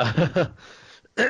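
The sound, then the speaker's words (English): A quick run of three rough, throaty coughs, a breathy pause, then one more harsh throat-clearing burst. Fairly loud, with no talking over it. “So with the, sorry about the cough, just clearing the throat.”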